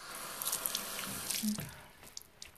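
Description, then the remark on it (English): Quiet wet sounds of water being dabbed and brushed through stray hairs, with small drips and soft splashes scattered over a couple of seconds and no talking. “So let me get my hair did by using some water to like go ahead and brush through the strayaways.”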